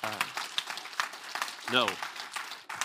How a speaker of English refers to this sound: Thank you. You can go and grab a seat. You guys, give him a round of applause.